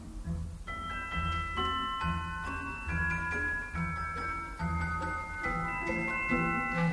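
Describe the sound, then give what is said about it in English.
Bright, bell-like celesta notes, played by someone at a keyboard that looks like a piano, chime in a steady, lilting melody above a soft orchestral accompaniment, each note struck crisply and ringing briefly before the next. “That beautiful bell-like sound ringing out above the orchestra is a celesta being played by someone sitting at a keyboard that looks a lot like a piano.”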